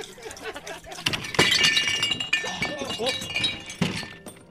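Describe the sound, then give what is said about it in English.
A loud crash of someone tumbling off a stool, with several heavy thumps and bright glassy clinks and shattering that ring on before a final clattering impact. “Oh, sorry about that. Fell off my stool.”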